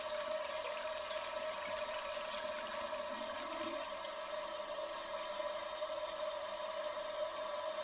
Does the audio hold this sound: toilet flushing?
yes